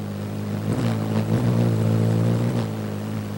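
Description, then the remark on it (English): A hummingbird's wings hum in flight: a steady, low buzzing drone with a slightly wavering pitch, sounding alone for about three seconds. “Just what puts the hum in a hummingbird's wings?”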